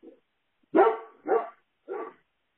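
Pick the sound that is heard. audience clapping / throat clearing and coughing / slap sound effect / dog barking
dog barking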